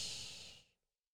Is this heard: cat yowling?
no